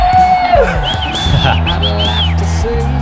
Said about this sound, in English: Oh yeah, crowd going wild.